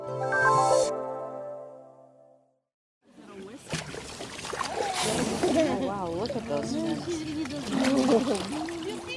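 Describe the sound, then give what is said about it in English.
A steady horn-like tone fades to a brief silence, then a boat full of excited whale watchers on the water in Baja: overlapping voices and exclamations over splashing and lapping water, lively. “That's a boat full of whale watchers in Baja.”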